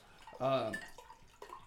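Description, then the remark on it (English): Home-fermented beer pours from a bottle, a short burst of gurgling with a rising tone, followed by faint dripping and splashing. “I love the pouring sound.”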